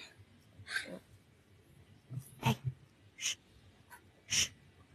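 A dog whimpers and snuffles in a few short, breathy bursts spaced out over several seconds, fairly quiet, with no talking.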